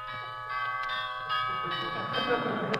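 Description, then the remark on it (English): A doorbell rings with a bright, sustained metallic tone, struck again several times in quick succession so the chimes overlap and build into a steady ringing wash. “Where's the doorbell? Oh, here it is.”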